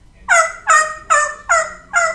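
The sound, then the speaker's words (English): Five quick, evenly spaced turkey gobbles, each a bright, warbling burst, repeated in a steady rhythm. Loud, with no talking. “Gobble, gobble, gobble.”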